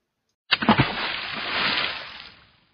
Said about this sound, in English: When we eventually arrived at the cabin 3/4 of the way up the mountain, we had some time to kill, so we went to skip rocks in the water for fun since the cabin was on a lake in the clouds.